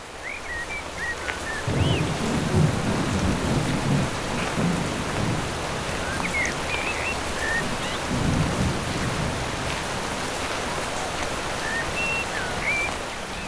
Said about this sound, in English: Voices drowned out by thunder and lightning. E. Everywhere, the rain splashing down.